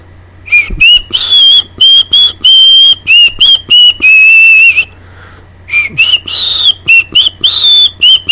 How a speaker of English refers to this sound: Every time I start to talk about it, I end up whistling Red River Valley. That's a great old song, but my whistling is terrible. Watch.